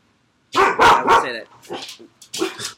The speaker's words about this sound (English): Also, Luna's take on it. Nah, that wasn't Luna. That was our other dog.